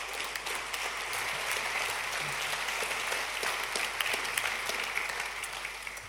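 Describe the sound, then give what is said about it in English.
An audience claps steadily for about six seconds, a dense, even patter of many hands with no voices over it, holding a constant level before easing slightly at the end. “Why don't you give him a big round of applause as he comes?”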